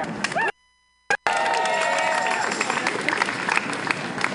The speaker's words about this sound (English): Thank you so much. Can everybody clap it up?